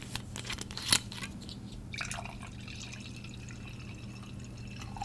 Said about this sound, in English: I was waiting to pour my glass of wine until I started recording because I thought it would sound cool. So here we go. Okay. I only got one shot of this.